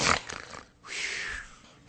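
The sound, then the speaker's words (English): A person imitates snoring with a rough, rattling inhale followed by a longer, breathy, wheezing exhale that has a faint whistling tone, moderately loud over about two seconds. “Snoring at night.”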